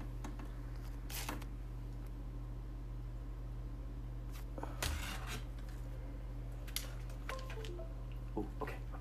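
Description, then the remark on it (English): Scattered, faint key clicks from a computer keyboard come in short irregular bursts over a steady low hum, like someone tapping a few keys at a time rather than typing continuously. “I'm so excited the keyboard works.”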